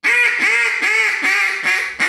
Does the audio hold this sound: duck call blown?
yes